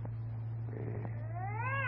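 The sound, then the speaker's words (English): A cat behind a door lets out a drawn-out yowl, rising and wavering as it swells near the end, over a steady low electrical hum with no voices. “And I'm telling you, that cat you got in there is violating the city ordinance.”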